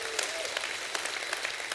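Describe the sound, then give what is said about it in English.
A church audience gives a hand clap and a shout of praise, clapping steadily in a dense, even patter of many hands with a few sharper claps standing out, and a faint vocal cheer rises briefly near the start. “Somebody give him a hand clap and a shout of praise.”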